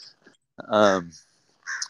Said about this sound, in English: So I think I'm getting haunted by this crow, dude. Some of those crows can be pretty aggressive.